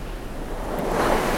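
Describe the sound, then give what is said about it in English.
Ocean waves wash steadily onto the shore at a beach, a broad, continuous rushing that swells slightly louder toward the end, with no voices present. “Just feeling the water beneath you, bobbing you up and down.”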